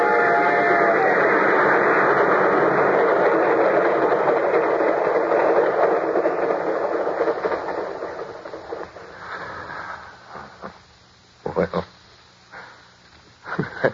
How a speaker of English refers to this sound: The train was coming closer. I could hear its bell. Heard its cry, its whistle crying.